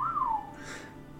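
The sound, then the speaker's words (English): A single short whistle, a clear tone that rises briefly and then slides downward, heard on its own with no talking. “near you whistles.”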